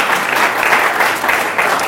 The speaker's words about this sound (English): If you believe that, clap your hands for Christ. Come on.